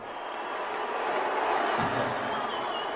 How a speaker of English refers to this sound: Cheers and boos, I say.